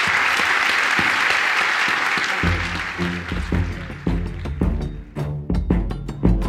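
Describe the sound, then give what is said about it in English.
An audience claps loudly in sustained applause. Around the midpoint, punchy music with steady beats rises in and plays over the clapping. “Warm round of applause for them.”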